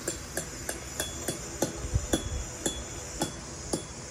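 A meat mallet pounds steak in a steady series of about ten sharp, close taps, evenly spaced roughly every half second, with no talking.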